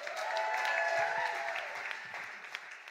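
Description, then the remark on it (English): A crowd applauds steadily for a few seconds, a dense wash of clapping with scattered cheers and a faint whistle riding on top, tapering slightly toward the end. “Please make some noise”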